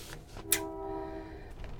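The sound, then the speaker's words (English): A train passes: a sharp hiss gives way to a sustained, steady horn-like tone over a low rumble, moderately loud, with no talking. “Thank you, Train.”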